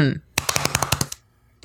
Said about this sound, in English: Well, that's because I was pounding my chest like I'm a monkey or an ape of some kind. So it was more my sternum and less my titties.